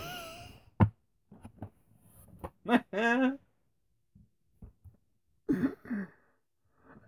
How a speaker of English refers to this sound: You've got me coughing now. This is not coronavirus related.